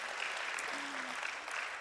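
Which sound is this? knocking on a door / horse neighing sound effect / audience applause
audience applause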